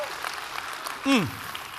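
A church audience claps steadily throughout for the worship team, a dense, even patter of applause, with one short cheer that slides downward in pitch partway through.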